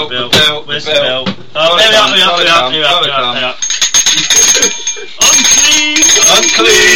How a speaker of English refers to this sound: Is this when the bell comes out? Where's the bell?